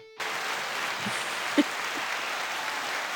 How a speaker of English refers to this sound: I don't know if that's appropriate to cheer after that, but yeah.